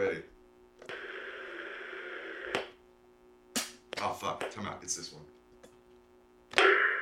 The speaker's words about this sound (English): Listen to this snare that you can make with the door.